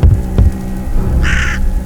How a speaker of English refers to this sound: All except the crow calling violently at Christian, trying to escape his perch.